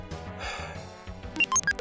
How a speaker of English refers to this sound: Tally it up. Oh, I got a computer sound effect for this.